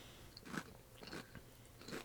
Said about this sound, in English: Oh, okay, because you're just eating chips.